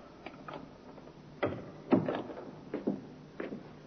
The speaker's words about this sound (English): The door, Inspector. I heard it, Sergeant.